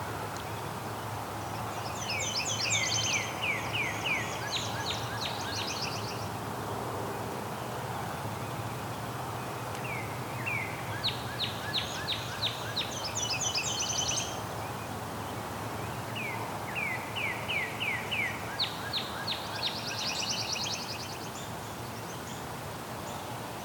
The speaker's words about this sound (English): There's our pine warbler again.